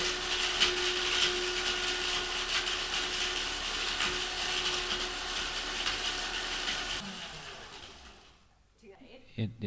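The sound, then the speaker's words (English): A blender grinds an avocado seed, a loud, rattling, steady roar with a motor hum that runs for about seven seconds before cutting off, leaving quieter clatter and faint handling sounds. “Now we're blending the avocado seed.”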